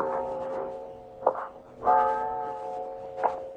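The large bell of a cathedral with a clock and bell tower on the Stubelplatz in Hamburg tolls after midnight with slow, heavy strikes, each one ringing out with a rich, lingering hum that overlaps the next, echoing, with no voices.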